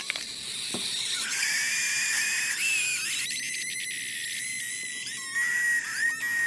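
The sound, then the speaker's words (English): A capped bottle of Coke shrieks from escaping gas pressure, a loud, continuous high-pitched whine over airy hiss that wavers and shifts pitch for several seconds, with no talking. “The soda scream?”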